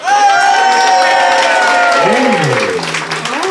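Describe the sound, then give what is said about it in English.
A studio audience applauds loudly and steadily to vote on which side of a debate is in the right, with cheers and rising, falling whoops and shouts riding over the dense clapping throughout. “So if you think Joel and Santor the Centaur and therefore Steve is in the right, applaud now.”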